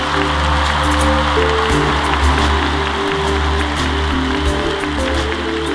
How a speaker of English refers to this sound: You were just dazed by the crowd. You were the thunderous applause. It could gobsmack anyone.